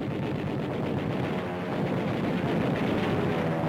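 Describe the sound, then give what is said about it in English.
A dense, continuous roar of bombing explosions and gunfire bursts rolls on without pause, heavy and loud throughout, as Navy bombers attack Japanese planes on the ground and their runway at Truk Atoll in the mid-Pacific, with a rumbling undertone like aircraft engines beneath the blasts. “Roaring in from the sea, Navy bombers blast Jap planes before they can leave the ground and destroy their runway.”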